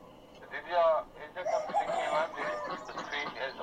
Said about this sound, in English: Hang on, the chickens just got in my office. Hang on, let me get rid of these chickens. Alright, get out of here, chickens.